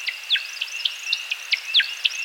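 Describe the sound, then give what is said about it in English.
An American woodcock's high, liquid twittering: quick chirps repeating in a steady, fluttering series over a thin sustained whistle, moderately faint and with no voices. “Let's listen to the timberdoodle one more time.”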